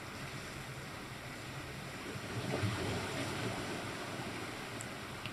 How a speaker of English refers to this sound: and just allow yourself to notice whatever it is you notice inside or outside of you, including the waves crashing in our surroundings here.